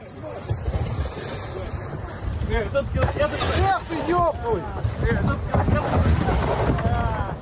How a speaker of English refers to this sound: If you have ever wondered what a Russian geographical expedition being assaulted by walruses sounds like, do we now have a treat for you?